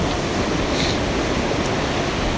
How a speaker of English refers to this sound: Now we're on a main bit. There's a big log crossing it. Slightly submerged, getting washed over the top by the water.